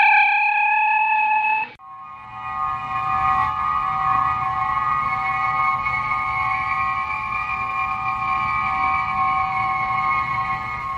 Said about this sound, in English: The transporter is something I really enjoy using.